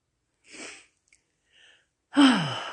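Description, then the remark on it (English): Breathy airflow sounds of a person breathing in during a prayer: a soft intake, a faint pause, then a loud, rushing deep breath with a slight voiced rasp. No talking. “Big deep breath, Lord. I am breathing in the Holy Spirit.”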